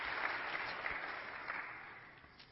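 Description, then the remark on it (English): Steady audience applause, a dense wash of many hands clapping at a fairly even level, gradually tapering off slightly toward the end. No voices stand out. “Now, that's good for applause.”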